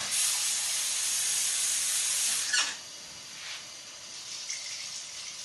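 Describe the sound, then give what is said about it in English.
Water is poured in a steady, bright rush for about two and a half seconds into a boxed baking mix, then cuts off with a small splash, leaving quieter, faint rustling afterward. No one speaks. “We're gonna slap some water.”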